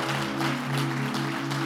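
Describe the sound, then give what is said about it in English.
A crowd claps together in a dense, continuous patter, clapping in response to a call to clap and say 'Jesus is the way', set against sustained low organ-like tones that hold steady throughout. No one speaks. “Would you clap your hands and say, Jesus is the way.”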